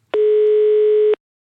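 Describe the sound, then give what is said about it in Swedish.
A single steady telephone ringback tone, about one second long, loud and clear with abrupt start and stop, followed by silence, as Radio Råsunda phones footballer Sven Dala Dahlqvist before an Örebro–AIK match. “Och jag ringde upp honom inför den här matchen.”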